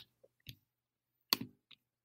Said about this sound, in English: pulling it up here, just Excuse the typing noises.